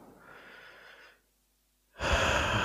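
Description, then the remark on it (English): A long, airy deep breath drawn into the stomach, a brief pause of silence, then a louder, rushing sigh of a relaxing exhale. No talking. “Breathing in deeply. And sighing out all the problems of the world.”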